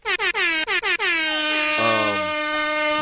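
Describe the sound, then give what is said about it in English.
A loud air horn blares in a rapid burst of short blasts, then holds one long sustained blast with a second lower horn tone joining partway through. No voices. “Hit him with the air horns, please.”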